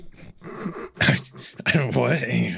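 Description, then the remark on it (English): A person clears their throat in two rough, raspy bursts, the second longer and more drawn out, with a gravelly voiced tone running through it. “What'd you say? Clear your throat.”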